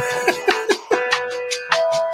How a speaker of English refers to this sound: Blow my nose.